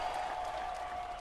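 A short burst of steady applause, dense and even clapping from a group of people with no voices standing out, holding at a constant moderate level throughout.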